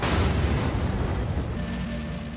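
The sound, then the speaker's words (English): Nuclear Reactor 4, designed for 3,200 megawatts, explodes after its power goes beyond 33,000 and core pressure can no longer be held back: a loud, deep explosion roars with heavy low rumble and broad hissing noise, staying strong for a couple of seconds before easing slightly. No one speaks over it. “123-45, explosion.”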